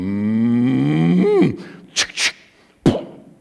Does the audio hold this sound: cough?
no